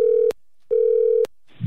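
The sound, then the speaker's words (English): A phone line rings out with two long, steady, mid-pitched ringback tones separated by a short silence, then a brief rustling click as the call connects. The call is placed to the winning bidder of a local charity auction. “Let's give him a call.”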